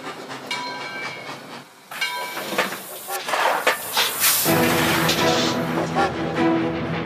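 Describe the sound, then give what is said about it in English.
A steam train rolls along the rails with a steady rumble and hissing steam bursts, mechanical tones droning throughout, moderately loud, with a faint voice-like murmur mixed in. “Luke Lee sent word back to school, and the cleats were sent on a later train.”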